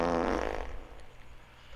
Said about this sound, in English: This is how I named them. Cartoon fart. Classic fart.